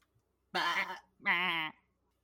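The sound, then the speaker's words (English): Two loud, wavering bleats in quick succession, a person's voice imitating a goat, each cry lasting about half a second with a shaky, vibrato tremble. “The 10th sign of the zodiac is represented by the goat. I don't know if I can do a goat.”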